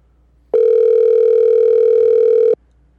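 A single steady telephone tone sounds loud and clear for about two seconds as a phone call to a guest is placed, then cuts off abruptly, like a ring signal on the line, with no voices.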